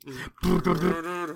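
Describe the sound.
A man lets out a single big, throaty roar. It is loud, swelling after a brief pause and holding for about a second with no other talk.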